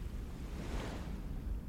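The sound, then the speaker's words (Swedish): A wave surges against the bow of a sailboat sailed single-handed at sea as the roller-furling jib sheet is hauled in: a brief swelling splash rising out of steady wind rumble and rushing water, then settling back into the continuous roar of the open sea. “Drar åt skotet på rullfocken medan en ny våg attackerar båtens för.”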